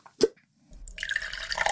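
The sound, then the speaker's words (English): Wine is poured into a glass: a single drip or plop, a brief pause, then a steady gurgling stream of liquid that rises in pitch as the glass fills. No one speaks. “All right, in case you're wondering, the wine cup has been refilled, and I'm going to tell you a story that's going to piss me off.”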